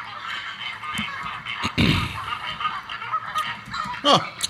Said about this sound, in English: what sound do flamingos make? And Adam sent me that link.